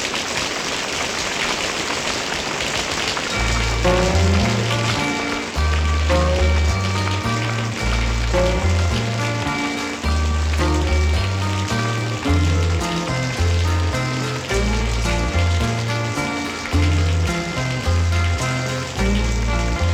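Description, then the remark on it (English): Steady rain patters on a surface as a continuous hiss, and after a few seconds a melodic tune with a deep bassline begins and plays over the rainfall. “But we're going to play in the rain for the next hour”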